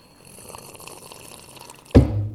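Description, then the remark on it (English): Loud slurping sip of tea: a soft watery hiss builds quietly, then a sudden, heavy gurgling slurp bursts in near the end and carries on with a low, bubbling rattle. No one speaks. “Do we have to listen to you sip tea this whole episode?”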